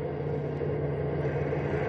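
A steady, droning bus engine hums throughout as the bus drives along the road, a continuous low rumble with a constant pitch. No voices are heard.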